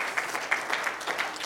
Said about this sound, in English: Oh, hallelujah. Why don't you clap your hands and stand to your feet today?